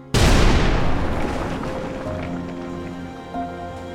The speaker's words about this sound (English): At around 10:30 p.m., Harry and Harriet's 22-year-old daughter, Peaches, awoke to the sound of a massive explosion somewhere in the house.